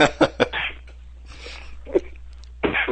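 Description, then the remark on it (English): A quick run of three sharp, harsh coughs, followed by softer rasping breaths and throat noise, then another loud, rough cough burst near the end. No one speaks. “Got me coughing there.”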